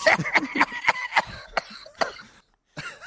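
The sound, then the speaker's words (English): A loud burst of rapid, voiced laugh-like pulses from ESPN host Mike Greenberg, who has COVID, breaking into several harsh coughs, then a brief pause before another cough starts. “It was laugh into cough.”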